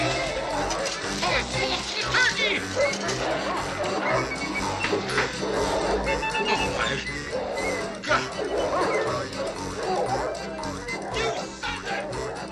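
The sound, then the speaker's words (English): Several of the neighbor's dogs bark and yip excitedly as they eat a family's Christmas dinner in a film scene, a noisy, chaotic scene with continuous commotion and indistinct voices mixed in throughout. “But I want to focus on the final scenes where the neighbor's dogs eat the Christmas dinner”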